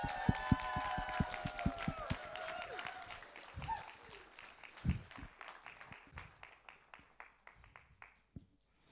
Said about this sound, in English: I'd like us all, one more time, to give Auntie Ling a huge round of applause for those achievements.